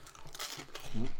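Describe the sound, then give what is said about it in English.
Dry crunching of a Monster Munch corn snack being bitten and chewed, a quick run of crackly bursts, followed by a brief murmur of a voice at the end. “Anyway, I'm going to taste it. I had to go straight in.”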